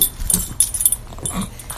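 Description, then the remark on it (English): A dog named Yogi lets out a couple of short, sharp barks, spaced apart, with a faint hiss of background noise in between and no one talking. “Yogi likes that we have a guest tonight.”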